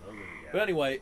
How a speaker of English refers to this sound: We got some horny frogs out. Wow! Wow! It has to be that, right? It's a frog strip out here. Yeah. It's a mate sesh out there.